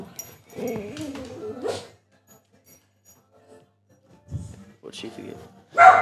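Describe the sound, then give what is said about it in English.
A dog whimpers and whines in high, wavering cries, followed by a short yip or bark, while people talk. “The dog.”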